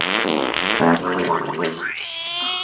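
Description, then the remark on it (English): A long, sputtering fart noise, buzzy and wet with uneven bursts for about two seconds, ending in a thin, squeaky, rising whine. No talking over it. “Does your sphincter spark, sputter, and spit?”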